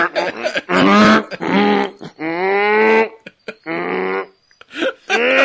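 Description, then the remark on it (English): A person imitates a hippo with a series of loud, drawn-out, groaning honks and grunts, about five bursts with short gaps, voiced and harmonic with a rough, bellowing quality. “So I'm going to ask, since we're talking about a hippo, can you do a hippo?”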